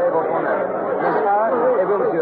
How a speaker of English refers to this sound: I'm standing approximately dead center of the Place de la Bastille, right in the very heart of this massive mob of people. It's hot here.